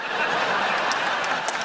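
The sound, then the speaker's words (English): An audience in Ottawa applauds to pick a winner, in a steady, dense wash of clapping, with a few scattered laughs and cheers mixed in, holding at an even loudness throughout. “Audience, it is up to you, Ottawa, to pick a winner by applause.”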